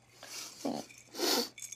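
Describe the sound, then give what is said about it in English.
Glasses clink together in a toast to a first anniversary, a few quiet taps with a short bright ring at the end, soft, with no talking. “Cheers.”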